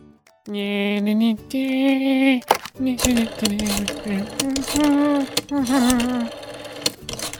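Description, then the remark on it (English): An old rotary phone being dialed, with rapid mechanical clicking and whirring in several fairly loud bursts over a few seconds, accompanied by a humming, voice-like tone. “You know, maybe I should really get a more modern phone.”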